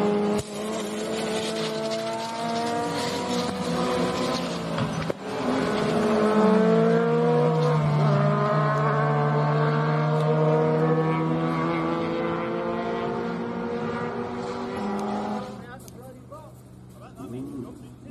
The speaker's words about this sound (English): I do happen to know that our first place winner did suffer a catastrophic brake failure and walked away from this a bit winded. So without further ado, the winner of the most spectacular crash of the year in club racing,